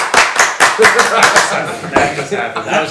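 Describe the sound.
An audience claps loudly together, sharp hand claps landing in a quick, fairly steady rhythm before blending into denser applause, with a few voices and chuckles mixed underneath.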